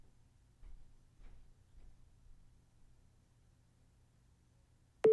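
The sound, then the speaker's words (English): A phone's recording countdown: a few soft, evenly spaced ticks in near silence, then a sudden loud beep at the very end. “I had my phone slightly away and I heard the countdown.”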